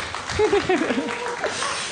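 A short burst of audience applause, a steady wash of clapping with a few voices calling out over it, lasting just under two seconds.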